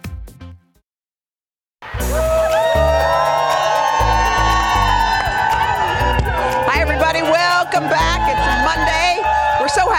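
After a brief silence, a loud outdoor crowd at the Plaza erupts into sustained cheering, with high whoops and shouts rising above a dense roar that continues to the end.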